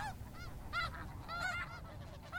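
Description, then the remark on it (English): A flock of migratory waterbirds at the Salton Sea, including pelicans, cormorants and shorebirds, calls over and over, with overlapping nasal, goose-like honks rising and falling in quick bursts above a steady low rumble. No one speaks. “for a lot of the migratory birds that connect birds from Alaska all the way down to South America.”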